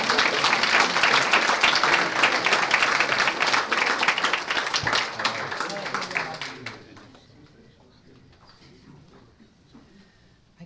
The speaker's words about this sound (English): Give a big round of applause for Carol Schlanger. Come on.